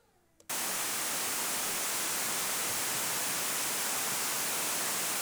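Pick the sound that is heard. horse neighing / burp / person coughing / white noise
white noise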